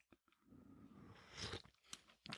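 A quiet sip of a hot Americano from an Ember mug: a brief airy slurp swelling midway, surrounded by soft wet mouth and lip sounds, with no talking.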